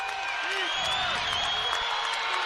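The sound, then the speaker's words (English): A packed basketball arena crowd at a BYU game cheers in a loud, sustained roar that holds steady the whole time as BYU draws within two points, with faint whistle-like tones riding on top of the noise. “And the crowd back into this as BYU draws within 2, the closest they've been in forever.”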